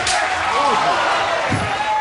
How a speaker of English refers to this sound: Did you hear that slap?